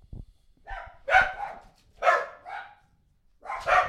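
Several dogs bark in loud bursts, a few sharp yelps and woofs overlapping in an irregular rhythm with brief pauses between them.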